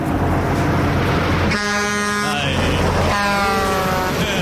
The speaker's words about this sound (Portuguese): Se você puder colocar uma buzina de um caminhão, eu agradeço.